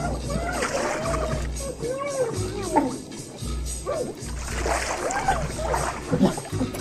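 A waterboarding sound effect: continuous water splashing and sloshing for about seven seconds, with gurgling, choked vocal sounds mixed in and a low rumbling underneath.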